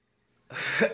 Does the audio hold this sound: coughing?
yes